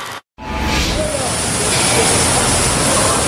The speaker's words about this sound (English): Vancouver construction site looked more like a water park today when a high-pressure pipe burst at the Stack development under construction on Melville Street. Water, as you can see, fired several stories into the sky, making quite the show